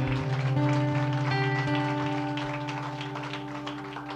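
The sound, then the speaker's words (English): A church audience claps steadily for those who received Jesus that day, in a dense, crackling wash that holds for several seconds and slowly fades, with sustained keyboard chords droning underneath. “Can we just give a round of applause for those who received Jesus today?”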